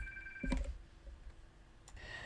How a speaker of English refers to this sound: So, sorry about that. The phone was ringing.